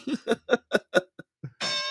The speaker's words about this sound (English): You get the bell this morning already.